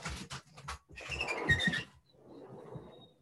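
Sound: dog throwing up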